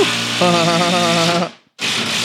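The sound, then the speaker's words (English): A power driver whines and grinds loudly as a big lag bolt is driven into wood, the steady motor drone cutting out briefly before starting up again. “That is why you pre-drill into wood, so it won't split when you put a big lag bolt like that in there.”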